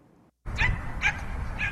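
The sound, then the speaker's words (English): A dog, Margo, at a dog park gives three short, high yelps and whimpers, spaced about half a second apart, over a steady outdoor background rumble that starts abruptly after a brief quiet moment. “takes his dog Margo here to this dog park almost every day.”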